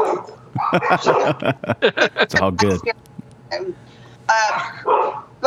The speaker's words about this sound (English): I mean, oh, there's the dog.